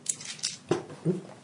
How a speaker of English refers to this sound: Can you stop throwing my dice on the floor?